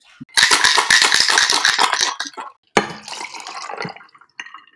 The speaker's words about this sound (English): Hopefully you heard our little cute shaker and pour sounds that we just made. That is all natural that we actually recorded. Yeah, we actually recorded with real it. A real shaker, real tequila, real ice.